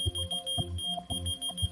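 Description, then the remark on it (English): A small electronic key finder beeps in response to a whistle with a thin, high-pitched tone, repeating in steady pulses roughly twice a second over a low rhythmic thump, moderately loud, with no voices. “If your key lost, you know, you can whistle. And then that device responds with a beep.”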